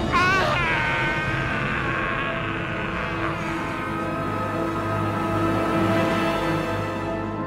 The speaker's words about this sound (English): That scream. What is it? It sounds like a man being eaten alive. It is the voice of a Jedi falling into the darkness. The voice of Exar Kun.